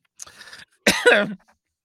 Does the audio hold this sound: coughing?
yes